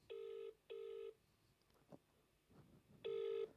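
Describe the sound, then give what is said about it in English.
A phone's outgoing ringback tone buzzes in three steady bursts as a caller tries someone again, two close together then a pause with faint background rustling before the third, clear as if through a handset speaker. “He's going to see three missed calls, so he's going to call back anyway.”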